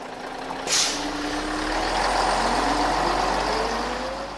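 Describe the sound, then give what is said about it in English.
A used school bus, just backed out of a tight space in a junkyard outside Portland, releases a sharp hiss of air brakes, then its engine rumbles and climbs steadily in pitch as it pulls away and accelerates onto the road. “He got some help backing it out of the tight space, and then turned onto the road.”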